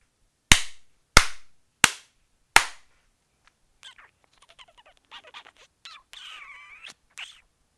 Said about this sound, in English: Four slaps and mouse kisses? What is that? No, that's like an armadillo.